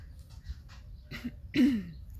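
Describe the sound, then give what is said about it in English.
A dry cough in two short bursts, the second louder and rougher, like someone clearing their throat, with no talking around it. “Okay, if I cough during the session, it's because, you know, we're all triggered now in our health.”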